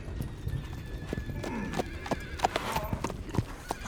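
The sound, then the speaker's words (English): Five horses ridden by men gallop, their hooves pounding in a rapid, uneven drumming that stays loud for the whole stretch, with a horse whinnying partway through; the riders circle around a man who has fallen to the ground. “He dropped the revolver as he fell to the ground, cradling his shattered knee as the thundering horses and their riders circled around him.”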